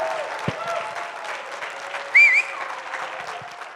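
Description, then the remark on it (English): Steady, dense applause from a crowd on its feet giving a standing ovation fills the whole stretch, joined partway through by one loud, piercing whistle that rises briefly above the clapping, with scattered hollers mixed in. “And so I'm going to ask you to stand to your feet, and we're going to give him a standing ovation with hoops and hollers and whistles.”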